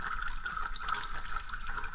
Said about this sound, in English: I made lots of recordings of dripping water in my kitchen and in the bathroom, and then water dripping into a bowl of water.